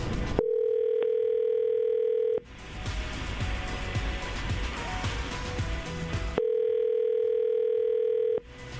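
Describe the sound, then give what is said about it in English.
A phone call rings out: two steady, two-second electronic ringback tones separated by a longer pause filled with background noise, loud, with no one speaking. “Robert has given us Amy's phone number, so let's call her right now and see if we can get some answers.”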